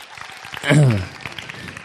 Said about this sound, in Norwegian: en skikkelig applaus når han kommer opp?